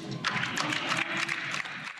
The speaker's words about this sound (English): And she, as you heard at the end there, Christine Anderson, the German MEP, was getting applause.